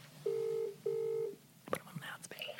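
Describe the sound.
A phone call being placed: two steady, mid-pitched ringing tones about half a second each, then a click and clatter as the line picks up and a faint voice begins.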